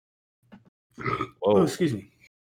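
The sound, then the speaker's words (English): A drawn-out voiced burp rumbles out in a couple of throaty surges, preceded by a faint low grunt, with no other talking around it. “hold on, I'm about to burp.”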